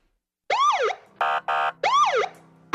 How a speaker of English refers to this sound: Sirens blaring. Red and blue lights flashing.